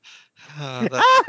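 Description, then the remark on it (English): A man gasps and pants for breath as he pulls himself up a rope and through a tunnel to the top: a short breathy inhale, then a run of loud, strained voiced gasps rising in pitch, like a voice acting out exhausted effort. “The Reverend is gasping at the top as he manages to pull himself through.”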